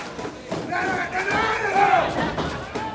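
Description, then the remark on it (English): A loud, dense crowd at a wrestling match roars and cheers continuously, many voices blending into a sustained swell with rising shouts, enveloping throughout. “Get the crowd's really getting beat into this one.”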